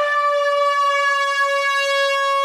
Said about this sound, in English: are we going to have some sound effect for incoming rant? It's got to be done. We should. No, but some sort of siren.